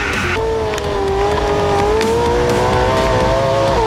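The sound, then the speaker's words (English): A loud, high-revving Borla short course race truck engine screams continuously, its pitch holding high with slight rises and dips, with no talking over it. “This is the Borla Short Course Scott Douglas Race Truck.”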